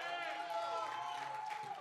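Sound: audience hand clapping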